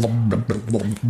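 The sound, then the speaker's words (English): A voice imitates bubbling with low, burbling blubs, several quick pulses in a steady rhythm over about a second, fairly loud and with no other sounds. “What's that, bubbles?”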